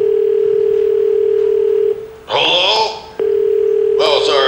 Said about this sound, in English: Sounds like the phone's sometimes still ringing. It gets stuck sometimes. I'm talking to you, but it's still ringing. That's strange.